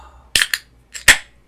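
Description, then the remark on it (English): A can of Almanac Brewing Company Buenas Vibras Mexican-style lager is cracked open: two quick metallic clicks, then a loud sharp pop with a brief fizzy hiss trailing off. No one speaks. “Got good, pop. Good pop.”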